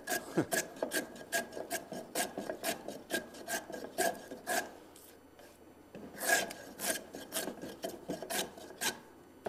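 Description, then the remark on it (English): A hand plane for rough work shaves wood across the bottom of a piece in quick, repeated rasping strokes, about two per second, with a brief lull partway through before the steady back-and-forth resumes. No one speaks. “But this plane is about as far from a finish tool as you can get.”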